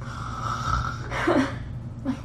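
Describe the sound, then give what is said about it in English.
A person imitates how a man was snoring, a snore like a bear's: one long, rough, rattling snort followed by a shorter one, moderately loud, with a low steady hum in the background. “Can you kind of reenact how he was snoring?”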